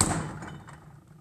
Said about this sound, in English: I just shut the door. Shut the door.